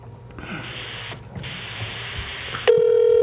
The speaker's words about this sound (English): We're now dialing Andy in the front room.